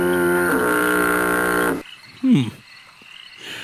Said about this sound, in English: Weird doorbell.